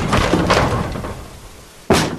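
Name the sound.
door being kicked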